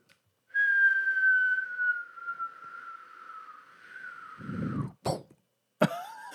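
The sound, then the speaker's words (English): A person whistles a sound effect, a long, slowly falling note that wavers and fades out halfway, then gives a short cough and a throat-clearing noise at the end. “That is quite possibly the worst sound effect I've ever heard. I lost the whistle halfway through.”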